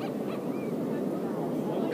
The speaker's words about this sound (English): Look, they're being attacked by seagulls.